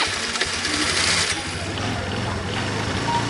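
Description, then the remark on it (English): A video game sound effect of a small motor scooter engine buzzing and revving steadily for a few seconds, a loud, rattly putter with no voices over it. “Oh, those kind of scooters, not e-scooters.”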